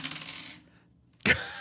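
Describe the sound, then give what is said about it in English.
Dice rattle and tumble across a hard tabletop in a quick burst of clicks during a tabletop role-playing game, then after a brief pause one sharper, louder clack rings out. “Give me a roll plus cheek.”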